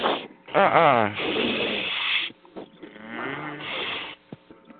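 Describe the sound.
Loud, raspy snoring: a voiced, rumbling snort followed by long noisy breaths, repeated twice over a few seconds, with a thin, phone-like tone.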